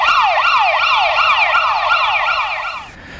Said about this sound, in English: I need a siren. A big old siren. Here we go.